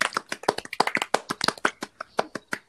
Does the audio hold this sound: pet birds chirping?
no